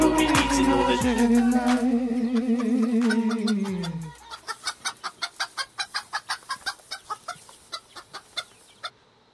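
A drawn-out, wavering chicken call gives way to a steady run of about twenty quick, evenly spaced clucks, fairly loud, with no talking.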